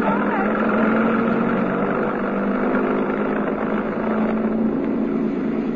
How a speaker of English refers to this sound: There's a truck parked outside the stage door. Hey, it's coming straight down the alley.